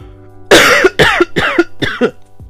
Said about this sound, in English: I need to cough.